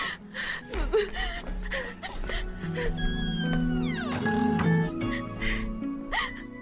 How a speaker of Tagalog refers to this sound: Patay ka, ba't ka umiiyak?